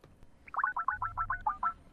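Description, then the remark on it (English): A quick run of about nine short electronic beeps in a fast, even rhythm as a software phone dials a call to a computer hardware store, fairly clear with no one talking. “Makes a little dialing noise.”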